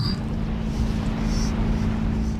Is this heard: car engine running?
yes